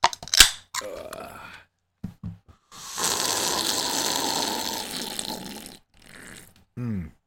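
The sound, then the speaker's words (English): A sharp click, a few short scuffs, then a steady, hissy slurp from a Red Solo cup, drunk as a toast, lasting about three seconds, ending with a brief vocal sound. “It's a quick slurp.”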